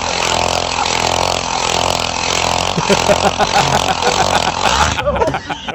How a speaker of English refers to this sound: But you hear the noise, it keeps getting faster and faster. What is that? Some sort of ice drill? I have no idea. Is that for fishermen or something?